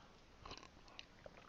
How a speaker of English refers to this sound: So I thought I would, I should remind myself, drink a sip of tea,